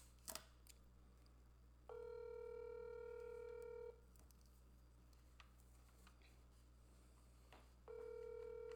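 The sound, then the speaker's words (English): A telephone rings out on the line: after a brief click, a steady buzzing ringback tone sounds for about two seconds, pauses, then starts again over a low background hum. “So let's see if we can get Bethany on the phone.”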